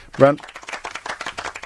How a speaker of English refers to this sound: All right, a round of applause, because you'd studied it and you used the word epigenetics